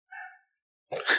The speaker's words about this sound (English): Am I going in and just editing out every bark?